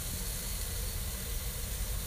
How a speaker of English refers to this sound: All right, my phone's getting hot, fam. But anyways, that was the shit fucking sizzling it up in the oven, in the kitchen.